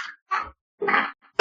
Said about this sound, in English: I'm coughing.